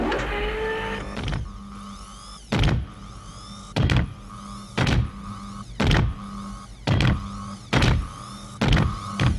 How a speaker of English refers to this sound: And then the door opens. The pressure door starts to open up.